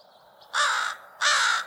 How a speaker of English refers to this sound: Crows are really fun. We call them undeg. Undeg is describing a change that's happening, and I think it's talking to the role that crows play in in indicating changes in the seasons.